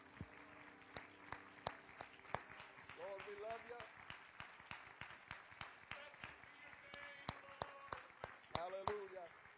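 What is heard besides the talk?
audience clapping hands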